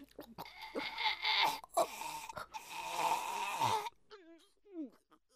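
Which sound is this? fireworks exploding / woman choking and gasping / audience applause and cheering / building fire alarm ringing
woman choking and gasping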